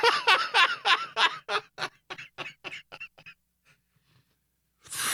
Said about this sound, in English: Got a cough to get off.